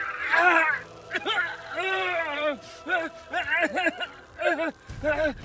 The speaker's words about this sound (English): Marceline places her hands over Warden's wounds. The sound of his metal flesh melting itself back together is broken only by Warden's painful screams.